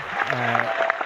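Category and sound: sound effect, crowd cheering sound effect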